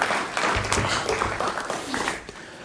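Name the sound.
round of applause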